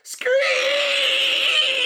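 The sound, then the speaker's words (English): A voice makes a loud, sustained, high-pitched screeching sound, like squealing tires, holding steady for nearly two seconds after a brief breathy onset. “Screech!”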